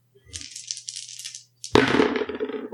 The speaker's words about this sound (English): Go ahead and roll it three again. Three dice.